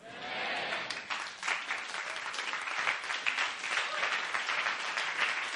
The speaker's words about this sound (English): I can't tell if you guys are clapping because you're excited or you're clapping because I actually committed to ending the sermon.